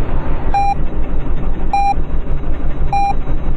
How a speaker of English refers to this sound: Yeah, that's cool, and that's cool with a backup alarm.